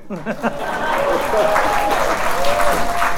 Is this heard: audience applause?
yes